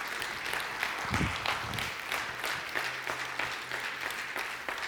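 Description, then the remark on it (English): An audience applauds steadily, a dense wash of many hands clapping at a fairly even loudness throughout, with a brief low rumble early on and no distinct voices. “Come on, give him a good round of applause.”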